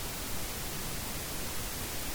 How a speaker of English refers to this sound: the static continues unabated